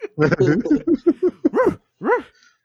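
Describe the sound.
A person imitates dog barks, a quick series of short gruff woofs followed by a few louder, drawn-out bark sounds with pauses, fairly loud.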